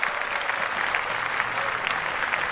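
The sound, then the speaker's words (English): A crowd applauds steadily for the announcement of a business launching on February 1, a dense, even wash of many hands clapping at once that holds at a constant loudness throughout, with no voices standing out. “Clap that up.”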